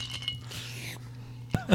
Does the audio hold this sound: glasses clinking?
yes